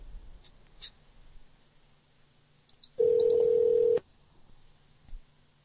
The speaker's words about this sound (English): Let me call the Moon Nightclub directly now.